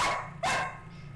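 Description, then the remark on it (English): A dog barks twice in a recording room, two sharp loud woofs a fraction of a second apart, followed by quiet room tone. “Wow, he is barking just on you. Yeah, so we got a dog in the recording room.”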